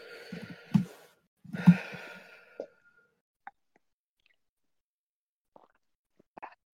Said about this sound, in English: Getting some lovely drinking water ASMR.